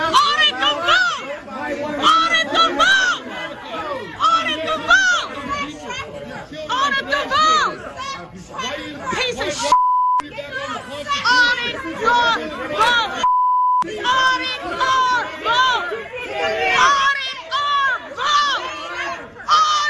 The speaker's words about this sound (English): Here's a little more of Lindsey Graham as people, a lot of them with the Q shirts, screaming at him at the airport.